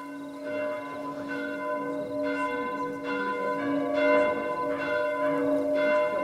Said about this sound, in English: he hears the church bells ringing. Such a glorious sound. The demon's eyes go wide at the sound of the bells.